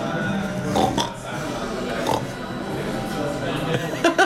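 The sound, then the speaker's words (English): Several people make imitation pig oinks and snorts for Chinese New Year, the Year of the Pig, a scattered run of grunting bursts that overlap and come in uneven spurts, fairly loud, with a few quicker snorts near the end. “Can we all do our pig noises?”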